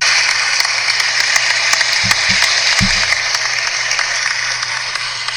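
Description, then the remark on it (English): A burst of applause from a crowd, steady and bright with many overlapping claps, a canned sound effect played to congratulate staff on their promotions, holding at a constant level for several seconds. “An extended clap for their service.”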